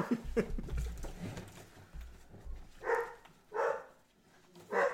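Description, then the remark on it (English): A dog barks three times in the second half, sharp separate woofs at an uneven pace, after a stretch of low background rumble. “Sorry, I think the dog stopped barking now.”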